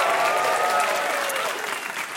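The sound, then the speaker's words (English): An audience claps steadily, a dense wash of many hands with a few faint voices mixed in, loud throughout and tapering slightly at the end. “If you're a kidney and you know it, clap your hands.”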